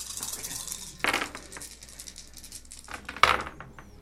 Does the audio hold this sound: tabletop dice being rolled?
yes